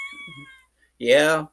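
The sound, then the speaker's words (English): A cat lets out one loud, drawn-out meow, about half a second long, following a quieter stretch with a faint steady tone and soft low murmuring. “Oh, sorry, Kitty.”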